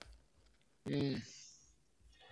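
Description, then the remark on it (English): A short burst of sharp, rapid clicking crackles through a speaker's thin, band-limited call audio, loud for about half a second before fading into faint background noise. “It's just like there's like a clicking with your audio.”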